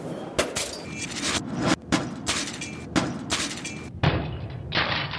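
A bottle of Alsatian wine is smashed against a doorpost: a series of loud, sharp bangs at irregular intervals, each followed by a bright, noisy burst.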